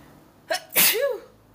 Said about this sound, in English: I just keep on sneezing. Like, it just keeps on happening. I don't know why.